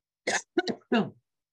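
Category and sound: human body sound, coughing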